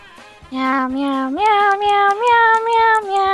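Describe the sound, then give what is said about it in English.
A person imitates a cat with one long, drawn-out meow that climbs in pitch in steps, loud, over a faint, steady ticking in the background. “Meow, meow, meow, meow, meow, meow, meow, meow, meow, meow, meow, meow, meow, meow.”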